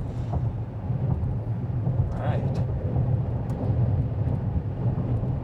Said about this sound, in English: Outside of the wind gust, which really are pushing the truck around. Yeah, you can see us kind of doing the head bob thing. That's the 50 mile an hour wind gust.